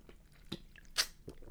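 Quiet mouth sounds of someone sipping water: a brief slurp and a couple of soft gulping clicks, with no talking.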